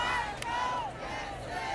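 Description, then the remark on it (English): A large crowd of hundreds of fans outside a courthouse cheers and shouts continuously, many voices blending into a loud, sustained roar with a few higher yells rising above it, cheering on a man dancing on the roof of his car. “good enough to jump on the roof of his car and start dancing as his crowd cheered him on.”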